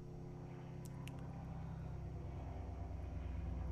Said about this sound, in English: I heard a plane go over my house, and then I shortly heard it go over, like, Joe's house